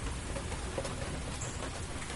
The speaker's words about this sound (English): He was out here all confident when it was just a drizzle, but now that it's a steady downpour, that bird's really shut his yapper.